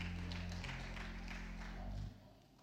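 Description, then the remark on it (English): A church audience applauds its children and families in a steady, dense wash of clapping, layered over low sustained musical tones that drop away shortly before the end. “Y'all are welcome to clap.”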